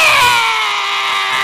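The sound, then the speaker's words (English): An adult voice imitates a crying infant with a single loud, sustained wail that slowly falls in pitch, with no other talk. “On behalf of all the infants, I want to say,”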